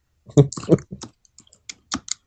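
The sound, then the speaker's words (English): A brief burst of muffled voice, then a series of sharp, irregular clicks from someone typing on a computer keyboard. The keystrokes come sparse and uneven, fairly quiet. “I hear someone typing.”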